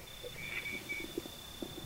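A night parrot's faint bell-like call at Bullen Bullen, 40 minutes after sunset, among ancient stone mesas in red dust: two brief, high chiming notes over a thin, steady high tone, quiet overall, with no talking.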